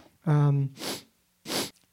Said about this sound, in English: Was that a bit of a sniffle? He's teared up a little bit? He's crying. Yeah, he's crying for sure.